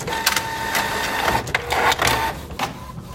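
A printer, started by a voice command to Siri, runs steadily with a whirring mechanical drone, broken by repeated sharp clicks and brief bursts of noise as the paper feeds through. No voices.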